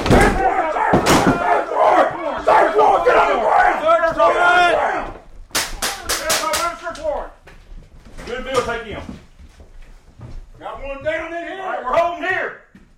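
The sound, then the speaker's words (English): During a Monroe County SWAT team drill at a vacant house, a door is smashed in with a few sharp, heavy bangs in quick succession until it falls, surrounded by loud, overlapping shouting from several people, including "Sheriff's office", before and after the crash. “An enormous crash pierced the silence. There was some yelling, but from the inside, I couldn't understand what they were saying.”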